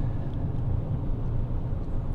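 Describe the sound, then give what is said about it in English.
Steady low rumble of a truck cabin while driving, a constant engine and road drone filling the background with no talking. “I think that has to, maybe is about going to do it for what I've been watching that I can remember as I'm driving here in the truck.”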